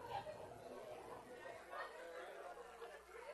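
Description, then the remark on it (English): A steady murmur of overlapping voices from not very many people, though it sounds like a huge crowd, chattering at once with no single speaker standing out, fairly loud and continuous with faint bits of laughter mixed in. “Man, there's not very many people, but it sounds like a huge crowd, huh?”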